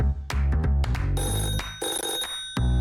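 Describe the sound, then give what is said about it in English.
A telephone rings as phone lines open for live callers, with a bright, trilling electronic bell sounding in quick bursts for a few seconds. It is fairly loud, with no voices over it. “but I'm going to open up the phone lines to anybody that would like to ask you a question live.”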